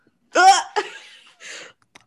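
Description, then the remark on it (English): A person imitates a cat hacking up a hairball: a loud, strained retching burst, a second gagging heave, then a short breathy rasp and a tiny final click. “Sorry, I had a hairball. I had to cough it up really quick.”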